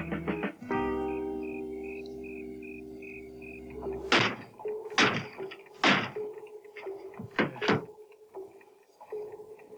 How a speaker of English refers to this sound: He just fucking knocking holes in everything.